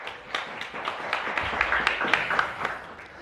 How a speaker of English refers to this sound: Welcome. Round of applause.